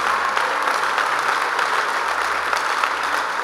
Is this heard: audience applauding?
yes